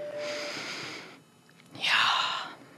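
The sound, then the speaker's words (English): A deep, airy breath drawn in for about a second, a short pause, then a louder rushing exhale, with no talking. “That last breath you take on your deathbed will be the name of God.”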